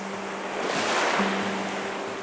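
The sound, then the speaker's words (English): An unexpected wave with a crest of foam crashes onto the shore, washing up to a rock, with a broad roaring wash that swells and then slowly fades into hissing surf, with no voices present. “rose up with a crest of foam from the deep green and purple far-off currents and broke upon the shore all the way up to the rock with a roaring sea laugh almost at her feet.”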